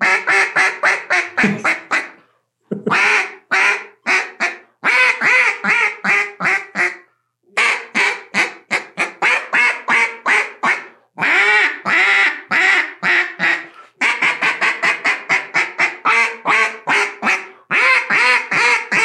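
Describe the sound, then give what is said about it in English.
A duck call quacks loudly in rapid, raspy bursts, each run of quacks separated by brief pauses, with no talking; the call starts and then cuts out. “You hear that, young duck? Totally cut out.”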